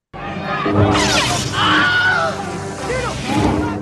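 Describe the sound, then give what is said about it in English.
The Wilhelm scream stock sound effect in a movie: a man's loud, piercing scream cries out in a few sharp, wavering bursts, followed by a cut-off yelp, with clattering action noise behind it. “So one of the things my kids like to look for in movies in general, not every movie, but they just like to keep their ears open, is for something called the Wilhelm scream.”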